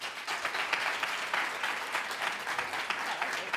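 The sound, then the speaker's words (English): Steady applause from an audience of students answering whether they are registered to vote fills the whole stretch, a dense patter of many hands clapping at an even, moderately loud level with no voices breaking through. “How many of you students in this audience are registered actively currently to vote? By applause.”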